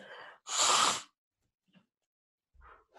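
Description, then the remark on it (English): A single forceful nose blow, loud, a harsh hissing burst lasting about half a second, with brief quiet rustling and breathy sounds before and after. “Blowing my nose.”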